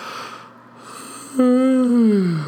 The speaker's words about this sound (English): Oh, shit. Sorry for that yawn.